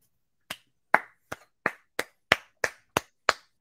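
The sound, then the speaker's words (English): A single person clapping hands about ten times in a steady, slightly quickening rhythm, each clap a sharp, bright smack with a short decay, with no talking. “I'm applauding for that one, baby.”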